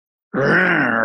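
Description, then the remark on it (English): After a brief silence, a voice abruptly launches into one loud, sustained, breathy groan, imitating the steady whooshing of blood flow inside the womb. “This blood flow sound.”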